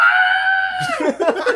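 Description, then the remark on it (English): A loud, high-pitched shriek from the character Desdemona the Shrieker, held steady for nearly a second, then dropping in pitch and breaking into a ragged, raspy sputter. No talking. “Desdemona the Shrieker.”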